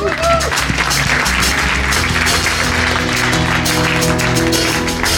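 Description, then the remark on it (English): An audience claps for itself loudly and steadily for several seconds, a dense wash of many hands with no clear rhythm, while low sustained tones hum underneath. “There's momentum, there's growth going on, and you need to give yourself a little clap there right now, you know.”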